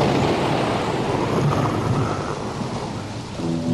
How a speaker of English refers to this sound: He said, we got to put in some rain and thunder. So sure enough, the whole thing starts with...